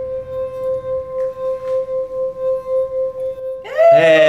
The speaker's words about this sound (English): And we can demonstrate that by, you have a handy cocktail stick. So if you balance that there. Okay. And if you start ringing the first one, that second one should either move or fall into the glass.